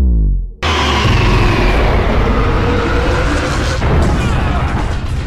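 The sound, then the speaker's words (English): A deep low rumble gives way to a sudden, massive sci-fi seismic charge explosion, a loud sustained boom with a ringing, shimmering roar and a second surge near the end. “So this explosion in this episode of the Clone Wars is like that on steroids.”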